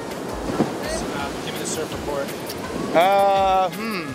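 A steady, loud wash of surf rolls on throughout at the Bluff surf spot, beach-break waves breaking about 10 yards offshore in a continuous roar, with a brief tonal, bleat-like call rising above the noise near the end.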